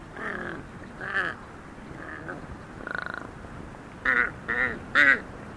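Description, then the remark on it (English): A huge Tibetan crow hopping across a high field gives a series of odd, nasal croaking calls, about seven in irregular succession, the final three louder, with no voices. “I remember being startled by the bizarre sounds made by a huge Tibetan crow hopping across a high field.”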